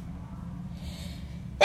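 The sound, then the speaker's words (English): A quiet breathy inhale followed by a single sudden, loud sneeze bursting out at the very end over a low background hum. “I have to sneeze.”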